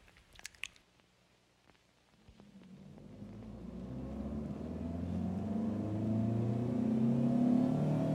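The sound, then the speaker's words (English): A few sharp clicks and rustles, then the engine of a packed car heading back to Hamilton early on Labor Day Monday rumbles to life and steadily builds, its tone rising as it accelerates and grows louder, with no voices. “Sugar and Ewing packed up the car and headed back to Hamilton”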